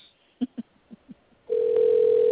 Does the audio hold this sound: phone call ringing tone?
yes